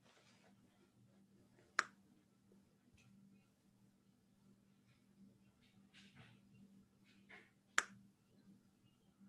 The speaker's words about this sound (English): And if you do, if you mess up, if you make a mistake, I want you to snap your fingers. And I want you to count how many times you snap your fingers and you mess up.